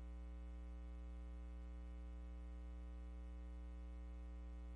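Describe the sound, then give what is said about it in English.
A steady electrical mains hum drones without change for the whole clip, a low buzzing tone with layered harmonics and faint static behind it, fairly loud and with no voices. “That thing humming, cuz.”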